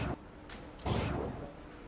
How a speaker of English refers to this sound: Do we have any sound effects for number four? Anything we could procure? That's what I figured. How about this? A gunshot.